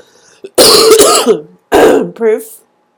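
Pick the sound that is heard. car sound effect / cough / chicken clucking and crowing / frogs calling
cough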